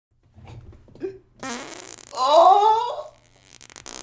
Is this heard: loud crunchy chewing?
no